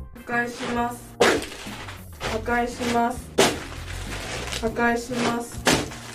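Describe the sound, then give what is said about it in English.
A woman wearing shoes stomps on dry ramen noodles, producing sharp brittle crunches and crackles at an uneven pace, several loud snaps standing out, while a wordless voice sounds in the background. “She's got shoes on and she's stomping like ramen noodles.”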